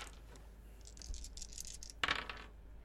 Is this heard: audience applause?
no